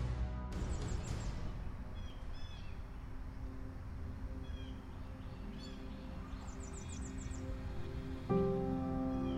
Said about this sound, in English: you hear the sound of birds chirping, and the sun is beating down hot on you as you put your tools at the side of the shack and you've finished another day of farming.